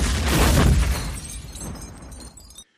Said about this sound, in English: Val Kilmer, whose name is Chris, leaves a bomb in the ambulance. Mm-hmm. I mean, this stuff all moves really fast. Yep. And the cops are already investigating the scene, and our guys are driving away in a station wagon just as the ambulance blows up.